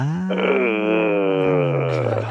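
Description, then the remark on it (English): A soft scream comes out as one long, low groan, held at a steady pitch for about two seconds, fairly loud and voiced throughout, with no speech around it. “What you had right there was more of a groan, which it can be very bad.”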